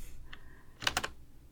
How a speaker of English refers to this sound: This is a simple entrance. And you guys get to listen to the keys clicking, and I make sure to use color as I document.